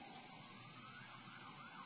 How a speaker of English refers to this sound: Oh, there are more sirens, man. They're going ape Schmidt.